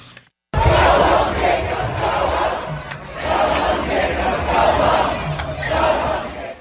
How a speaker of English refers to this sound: And the mayor was booed off stage.